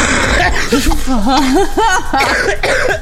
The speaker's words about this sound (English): Man, that is a nasty cough.